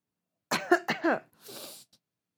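coughing and throat clearing

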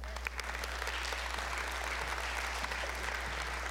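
audience hand clapping

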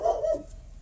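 dog barking

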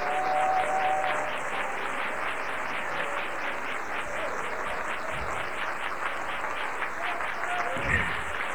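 audience hand clapping applause

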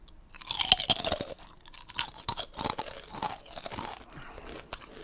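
crunching kettle chips

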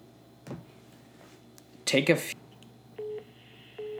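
telephone dialing tones

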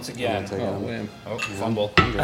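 glasses clinking

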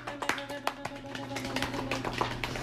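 clapping

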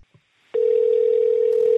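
telephone dial tone

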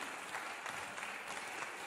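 audience applause and cheering

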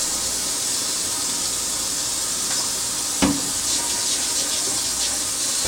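water running

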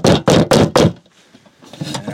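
knocking on a door

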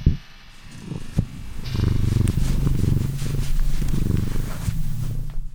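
cat purring

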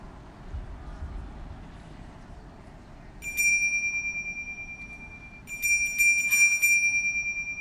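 bell ringing

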